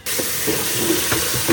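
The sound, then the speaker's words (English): Steady hiss of running tap water splashing into a sink as brine is dumped out and a turkey breast is rinsed, with faint intermittent clunks and shifts as it is moved under the stream; continuous, no talking. “And then we'll rinse it off.”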